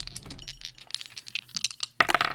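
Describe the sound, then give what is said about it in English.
Dice clatter and tumble in a rapid burst of sharp clicks, followed after a brief pause by a louder final rattle as they settle. “The dice are out, I'm sure. All right. Yeah, the dice. We got them.”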